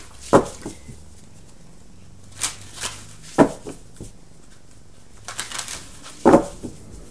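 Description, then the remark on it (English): Tarot cards being shuffled and a money card drawn: a handful of crisp snaps and papery riffles at irregular intervals, with quiet pauses in between and no one speaking. “You know, but let's get a money card for you.”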